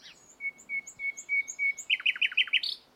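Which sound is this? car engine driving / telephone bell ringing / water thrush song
water thrush song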